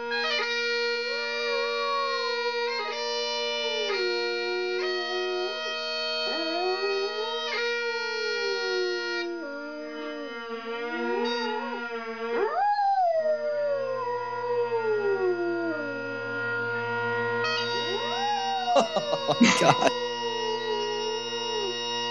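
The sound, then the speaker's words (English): A mixed-breed dog (a mutt) howls loudly along to droning bagpipes, its wavering, rising and falling cries weaving through the steady reedy chanter melody, with a sharp burst of noise near the end. “The song is indistinguishable noise, but what kind of dog is that howling to the bagpipes?”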